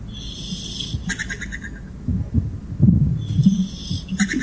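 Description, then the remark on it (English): Snoring with a low, rough rumble that pulses irregularly and grows louder midway, while thin, high whistling tones come and go above it. No one talks. “I'm going to play you guys some audio, and I want you to tell me who is snoring.”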